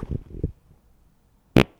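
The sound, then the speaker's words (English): A low, buzzy fart in two or three quick bursts, then a short silence before a single sharp, loud pop. “That was a perfect fart.”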